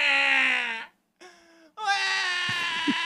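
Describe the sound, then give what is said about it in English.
A voice imitates a screaming baby in three loud, high-pitched wails, with a brief gap between the first two and a longer, sustained cry at the end. “I'm like screaming throughout the store.”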